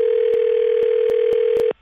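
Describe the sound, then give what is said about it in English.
A steady, unbroken telephone ringing tone hums loudly on one pitch for nearly two seconds while calling back a disconnected caller, with a few faint clicks over it, then cuts off abruptly. No one speaks. “Trying to get him back on the phone.”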